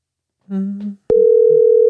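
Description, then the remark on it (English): A brief voiced sound is followed by a click, then a loud, steady telephone dial tone from a phone call patched through a line-in to the studio microphones, holding continuously until the end, with faint low voices murmuring beneath it. “How we do phone calls on the show.”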